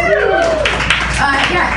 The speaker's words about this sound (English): Yeah, you. You clapped.